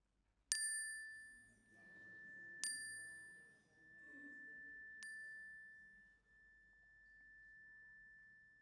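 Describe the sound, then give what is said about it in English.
A bright metallic chime, rung during a time of prayer while names are spoken aloud, is struck three times at slow, even intervals, each strike ringing out with a long sustained tone that lingers and slowly fades, with a faint low murmur underneath. “I invite you to call them to mind and speak them aloud as the chime rings, if you wish, so that we can hold them with you.”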